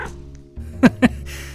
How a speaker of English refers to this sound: My stalker turned out to be an overweight creamsicle-colored cat, with black ears and an indifferent disposition, aside from me scaring it.